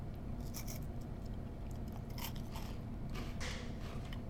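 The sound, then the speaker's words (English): Someone bites into a crunchy banana Kit Kat wafer bar and chews, producing a series of crisp, irregular crunches over a steady low background hum, with no talking. “Banana Kit Kat.”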